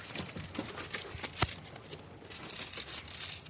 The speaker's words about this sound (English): crumple the piece of paper up a little bit. That's fine, yeah. And toss it in the ashtray there.